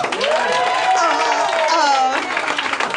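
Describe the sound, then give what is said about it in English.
A crowd breaks into steady, dense applause lasting the full three seconds, mixed with whoops and cheering voices rising and falling above the clapping. “Give us a round of applause if you're wearing pajamas right now.”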